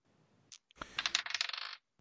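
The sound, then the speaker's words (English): Dice clatter onto a hard tabletop, a quick burst of rattling knocks that tumble and settle over about a second. It is fairly loud, with no voices. “I throw my dice and say, "Can I get in on some of this action?"”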